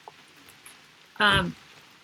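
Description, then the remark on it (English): A steady, soft hiss of rain falls throughout, fairly faint and even, with a brief vocal sound from someone rising over it for a moment near the middle. “Our curls are not going to stay in with this rain happening right now.”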